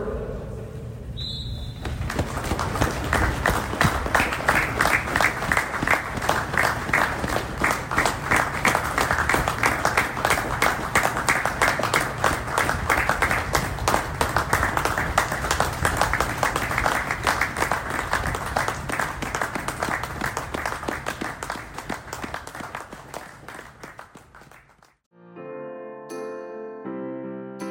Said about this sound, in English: So now, please join us for a minute's applause from the members of Tony's service to both of today's clubs and football as a whole, starting on the whistle of the referee.